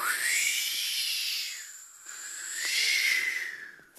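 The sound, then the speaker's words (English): Two long, breathy whooshing exhales blown out as a breathing exercise, each swelling and fading like a voice imitating an airplane flying past, with a brief pause between them and no talking. “Okay, we're gonna breathe in all the air around us that we can 3 times and then whoosh out like airplanes, okay?”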